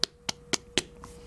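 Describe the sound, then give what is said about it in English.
Four sharp, evenly spaced knocks on a door in quick succession, each a crisp rap with a brief thud, followed by quiet. No one speaks. “At that point, you hear a knock.”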